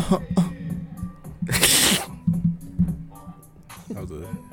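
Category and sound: human body sound, throat clearing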